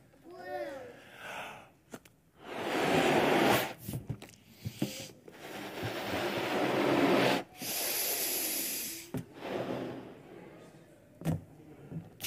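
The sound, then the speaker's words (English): A balloon is inflated by mouth as a birthday decoration in several long, forceful breathy puffs separated by short pauses for breath, each a loud rushing hiss. A brief voiced sound comes at the start. “So it's all blown up right now. What is in this balloon? Air.”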